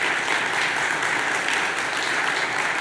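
A room full of people claps steadily, a dense, continuous wash of applause holding at an even loudness throughout, with no voices breaking through.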